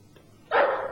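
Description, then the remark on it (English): After a half-second of near silence, a dog suddenly lets out one loud, harsh bark, the sound holding briefly before cutting off. No one speaks. “I'll shoot the dog as it comes out.”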